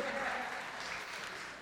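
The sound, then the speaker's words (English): An audience applauds steadily for a woman married 43 years, a dense, even wash of many hands clapping at once, sustained without a break. “give Miss Sandy a hand clap”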